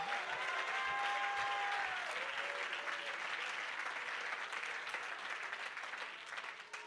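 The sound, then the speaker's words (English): An audience claps their hands unto the Lord in praise, a steady, dense wash of applause that holds for several seconds, with faint voices and a few sustained tones rising through it before it slowly thins. “If you believe that, would you clap your hands unto the Lord and give him great praise?”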